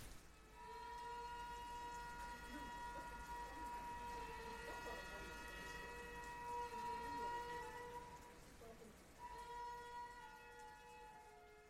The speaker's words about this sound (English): But the rain's suggesting this is a good place to take a break.